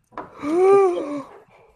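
A single loud, drawn-out yawn: a breathy intake swelling into a voiced, arching groan that rises and then sinks, trailing off into a soft exhale.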